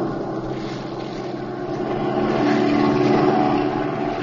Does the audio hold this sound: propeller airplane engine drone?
yes